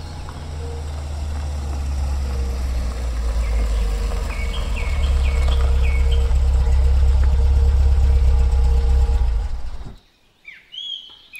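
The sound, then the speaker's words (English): A struggling car engine idles with a loud, rough, rumbling drone for about ten seconds, then cuts out abruptly, leaving quiet outdoor air with birds chirping. “Car trouble?”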